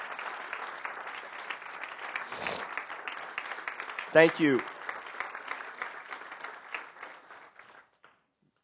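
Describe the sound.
An audience claps steadily in dense, sustained applause for about eight seconds before it fades out, with a brief spoken thanks cutting through midway.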